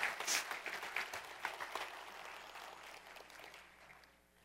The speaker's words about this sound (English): Yeah, you ought to really clap for anybody who's willing to come up here and do that, right? That's just incredible.